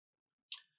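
A single sharp keyboard key click, crisp and bright, standing alone against silence with a quick decay.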